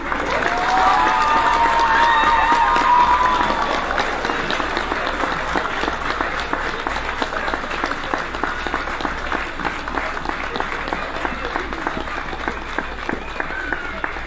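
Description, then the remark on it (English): A crowd applauds the city of Aurora, Illinois steadily for about fourteen seconds, dense clapping with scattered cheers and whistles near the start, holding a fairly even loudness throughout. “Let's give a clap to our great city.”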